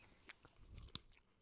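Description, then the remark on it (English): Chewing as someone crunches on crispy chili lime flavored crickets, with a couple of sharp, brittle cracks standing out over softer mastication noises, heard alone with no talking. “Yeah, I need him to know I'm like crunching a cricket.”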